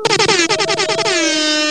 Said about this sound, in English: Yeah, I was gonna say before we go to before we go day by day, Kales for having like a dope panel. Man, air horns for Kales, man.